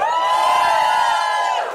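A loud burst of crowd cheering and whooping, sustained and bright, with many voices hollering together before fading slightly at the end.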